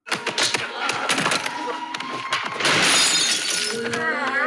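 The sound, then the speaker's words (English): A glass blender shatters loudly: a dense stretch of crashing, tinkling fragments and clattering shards, swelling into a bigger, brighter burst of breaking glass near the end. “Who has a glass blender? Mine is plastic.”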